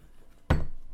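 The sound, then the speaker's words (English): A chair bumps or shifts with one sudden, heavy knock, sharp at the start with a deep low thud, then a short rattling fade. No one speaks. “it's a chair, guys.”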